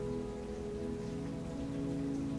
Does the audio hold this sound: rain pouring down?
yes